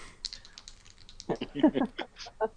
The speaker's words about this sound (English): So, while you're doing that, I'm going to roll some dice.